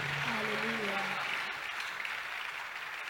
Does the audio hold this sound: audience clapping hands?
yes